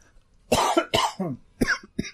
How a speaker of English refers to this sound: Well, he's going to just cough and die here, right here on the podcast, folks.